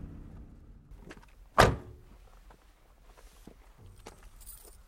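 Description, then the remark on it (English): A person gets out of a truck near Umani Falls in the Pondoland region: the truck door shuts with a single sharp thud, followed by scattered, soft footsteps moving off across the ground towards some bushes, with faint outdoor ambience and no voices. “gets out of the truck and heads towards some bushes.”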